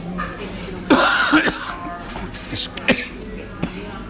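A loud coughing fit, caused by a piece of chips going down the throat the wrong way: a sharp burst followed by several more harsh, irregular coughs and throat-clearing spasms, with strained breaths between them.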